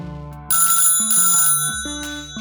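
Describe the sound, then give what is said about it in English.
A telephone rings with an incoming call, a bright, melodic electronic ringtone. Its repeating tonal pattern is punctuated by buzzy bursts, loud, with no voices. “Oh, it looks like he's calling me.”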